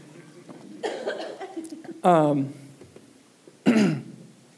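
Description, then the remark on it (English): Coughing and throat clearing in three rough bursts about a second apart. The last two are loud and harsh, with quieter breathy vocal sounds between them. “Was I coughing that loud?”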